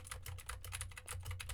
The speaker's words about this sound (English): Now I am typing on a keyboard with Gateron blue switches to see how much of my voice versus how much of the keyboard it picks up. And for the gaming folk, now I am typing on the sad W and the spacebar keys.